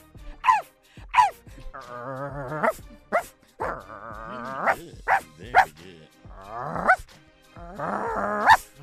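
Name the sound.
person imitating a dog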